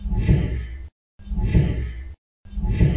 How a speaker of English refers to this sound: So it's like an angry, like breathing exhale that's right by the recorder.